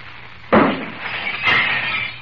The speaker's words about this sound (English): The pitcher explodes into a million fragments.